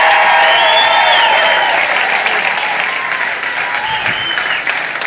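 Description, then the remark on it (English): A large audience at a church gathering applauds loudly and steadily, a dense wash of clapping with scattered whoops and cheers rising over it, sustained for several seconds without a break. “Can we give them one more huge, humongous clap?”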